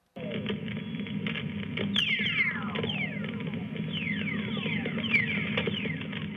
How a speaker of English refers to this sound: This is a classic whistler in a VLF system.